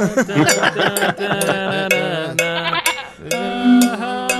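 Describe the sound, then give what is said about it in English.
Several goats bleat loudly and continuously, their wavering, nasal cries overlapping one another, with a few faint metallic clinks scattered underneath. No one speaks. “Need more goat bell. More goat bell.”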